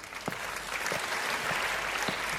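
Audience applause for a lady from the front row called up as a magician's assistant for a card trick, a steady wash of clapping with a few sharper individual claps standing out, sustained at moderate volume with no voices.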